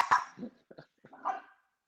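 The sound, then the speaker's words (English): Dogs barking outside in a short, irregular flurry of four or five yaps, somewhat muffled, with no one talking over them. “Sorry about these dogs who are still going crazy outside.”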